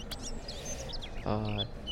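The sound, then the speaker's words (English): A small pet bird chirps and warbles in quick, scattered high notes, fairly soft against a steady background hum, with a short buzzy lower tone breaking in near the end. “My bird singing.”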